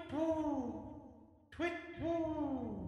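An owl hoots twice, each call loud, a long wavering note that slides downward in pitch, the second following a brief pause.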